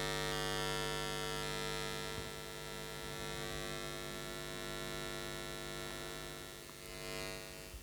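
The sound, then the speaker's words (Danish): A steady electrical hum with a low buzzing tone coming from a wall, continuous and unchanging throughout, moderately quiet, like mains current running through wiring. “Det er altså væggen, jeg lytter på nu.”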